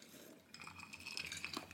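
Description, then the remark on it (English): Glasses clink together in a toast, a few bright ringing taps with a lingering high tone, fairly quiet, over faint background noise with no talking. “Here, can you hear this? Cheers. Can you hear this? Cheers.”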